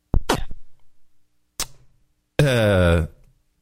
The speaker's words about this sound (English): Is that battery operated, your Vibra Slap?